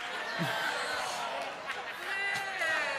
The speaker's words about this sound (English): No booing. Come on.